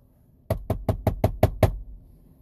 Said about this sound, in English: Well, what about that guy that comes knocking at your door?